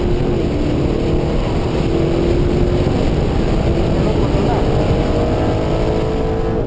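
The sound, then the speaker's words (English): A race car engine roars loudly and continuously, its pitch climbing and dropping as the car brakes hard, shifts down one gear to fourth, accelerates through a quick right-hand corner and slides sideways during a fast lap. “Hard on the brakes here, down just one gear to fourth. Another quick right hand corner, slide on the car.”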